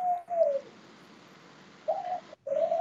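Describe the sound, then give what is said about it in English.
A pet bird coos in soft, low, throaty phrases: one drawn-out coo at the start, then two more after a pause, over a faint steady background hiss. “Well, that's my little bird trying to give you an answer.”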